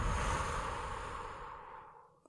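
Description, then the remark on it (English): A slow, deep breath blown out through the mouth, breathy, gradually fading away over a couple of seconds with no talking. “Breathing out all that you don't need.”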